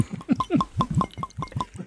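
Liquid glugs rhythmically out of a bottle into a glass, a quick series of close, gurgling pours with a faint clink at the rim.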